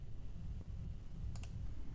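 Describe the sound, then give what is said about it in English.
A few quick computer mouse clicks, a faint one early and then a sharp double click, over a steady low background rumble. “All right, I'm clicking.”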